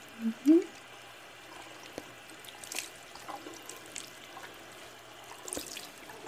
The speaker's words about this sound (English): I do enjoy the feeling of the water running over my face, over my hair.